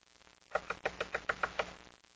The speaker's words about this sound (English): You don't walk up to somebody's house and, you know, that knock was for you guys.